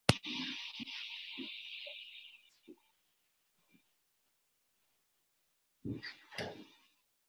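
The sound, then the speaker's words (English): A door scrapes and swings shut over a couple of seconds with a few soft knocks, then after a pause a heavier thud and a latch click. “I'm going to close the door because it'll help keep it quieter in here.”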